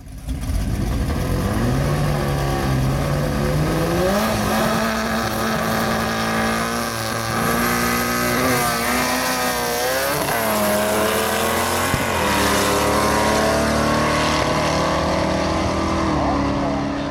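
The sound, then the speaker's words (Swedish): Loud, roaring drag racing cars rev and accelerate hard, their pitch climbing in repeated surges over a constant high-speed drone as they blast down a strip, with no voices. “Och därför är vi glada, Johan, att du kan rikta kärlek då till den här delen utav den så rika motorsporten som alltså heter drag racing.”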